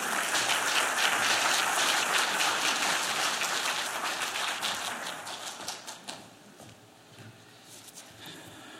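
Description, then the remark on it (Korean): An audience at a Sunday service claps together in sustained applause to welcome a pastor, dense and steady, then gradually thins out to a few scattered claps before fading. “오늘 하갈 다시 은혜를 마주하다 하는 제목으로 우리에게 은혜 주실 텐데 한번 우리 격려하고 환영하며 박수하겠습니다.”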